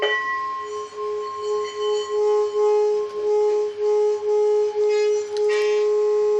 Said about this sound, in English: Whoa. It gets really loud. Yeah. That's why I love this thing. Wow. Huh. It's... So imagine, like, a wind chime, like, really big, where it, like, gives, like, these big gong sounds. And the resonance that it left behind was fascinating.